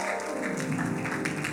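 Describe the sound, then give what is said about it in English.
An audience applauds to give God a round of applause after a prayer, in a dense, steady wash of clapping that holds at an even level, with a faint sustained musical tone running underneath. “Let's just give God a round of applause.”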